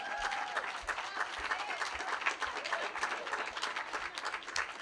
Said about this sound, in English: Which one are you clapping for? It's okay, you don't have to tell me.